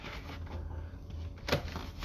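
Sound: paper being handled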